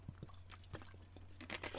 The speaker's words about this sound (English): I'm going to have a swig of water.